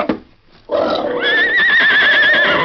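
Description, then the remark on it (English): A horse whinnies loudly, a long quavering neigh with wavering high tones that rises after a brief snort and holds to the end. “If he does, look after the horses.”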